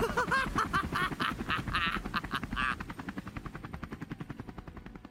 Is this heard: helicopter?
yes